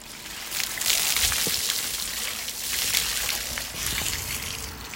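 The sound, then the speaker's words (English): A bucket of cold water poured over someone's head outside in the snow: a steady rush and splatter of water lasting several seconds, with a few sloshing bursts and no talking. “pours a bucket of cold water over my head.”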